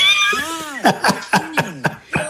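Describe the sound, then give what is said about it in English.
A cat meows repeatedly, a run of short, rising-and-falling cries in quick succession followed by one longer drawn-out meow. “Well, let's walk on over and see who's in our kitty corner.”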